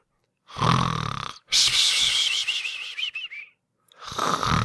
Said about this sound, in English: Ooh, I gotta get used to the snoring again.